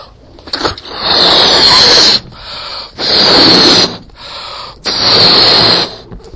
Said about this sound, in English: So I've now inflated the balloon. The balloon has a higher pressure than the surrounding air. The latex confines that higher pressure.